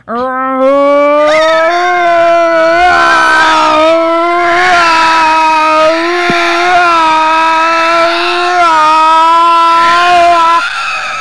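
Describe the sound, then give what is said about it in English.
Voices imitate a car engine doing donuts, one doing the engine noises and another the wheel noises: a loud, steady vocal drone with buzzy harmonics and a gently wavering pitch, held without a break for about eleven seconds. “You do the engine noises, and I'm gonna do the wheel.”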